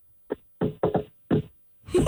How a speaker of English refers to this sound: It is a friendly knock.